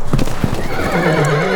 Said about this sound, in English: Horse, come back to me.